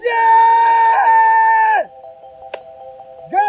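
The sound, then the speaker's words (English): A person lets out a loud, sustained high-pitched scream of joy on hearing that a pipeline has been canceled; it drops away after about two seconds, leaving a faint steady tone, before another shriek bursts in at the end. “I just start screaming.”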